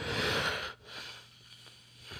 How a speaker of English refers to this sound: Excuse me. I apologize for the yawning. It's not even that late, and this is just ridiculous. So I apologize.